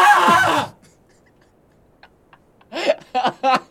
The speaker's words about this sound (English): Can you go ahead and yell for me? I want to make sure the audio software is actually picking up anyone except for me. How close should I be to the mic? Just, like, yell as loud as you can right now.